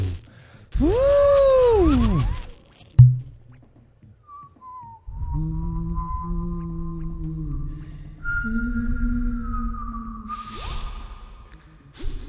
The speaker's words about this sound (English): Wait, did you just whistle and hum?